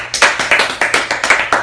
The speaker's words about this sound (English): When did you retire? Yesterday! Come on, y'all clap for that. Woo! She retired yesterday.